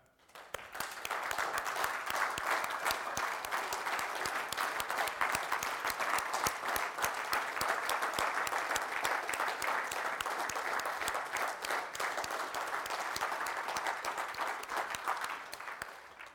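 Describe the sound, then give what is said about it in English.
An audience applauds the mothers steadily for about sixteen seconds, a dense, even wash of many hands clapping at once that holds its level throughout before easing slightly at the end. “And I think the time for you to receive your applause is now.”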